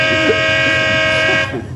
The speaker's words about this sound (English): Hey, look who's out bright and early. Looks like Doc Jones. That crazy horn.